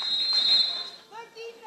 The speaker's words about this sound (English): Now we got a whistle and a timeout called by Gwinn head coach Shelly Olson.